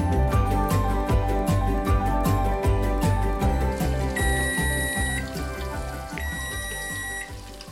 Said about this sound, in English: So there's our timer.